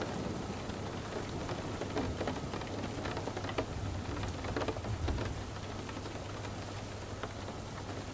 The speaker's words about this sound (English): Following the raindrops down the tunnel, the sound of the storm above fades off and out.